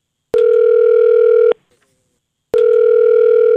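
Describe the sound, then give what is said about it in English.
A telephone ringing tone as a radio station calls a contest winner: two long, steady electronic buzzes separated by a second of silence, loud, with no voices. “Yes, and we're going to call them on the phone right now.”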